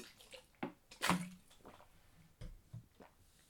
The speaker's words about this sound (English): excuse me again, sorry y'all. Gotta hit this water one more again.